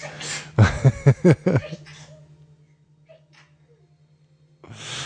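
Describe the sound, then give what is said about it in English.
A burst of sneezing: a sharp breathy blast followed by a quick run of four or five short, voiced bursts, fairly loud, then quiet with a low steady hum underneath. “Bless you. Oh, there's going to be a lot more.”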